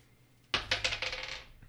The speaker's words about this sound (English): I rolled a 6, so. I have some dice.